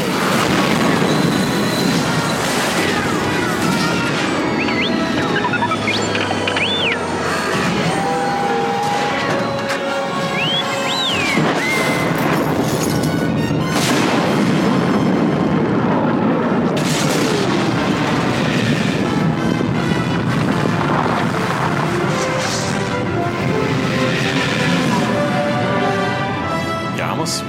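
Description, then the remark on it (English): The massive explosion of Jabba's sail barge from Star Wars: Return of the Jedi roars on for nearly half a minute, loud and dense, with crashing debris, deep rumbling and high metallic squeals and whistles streaking through the chaos. “This is a truly epic explosion.”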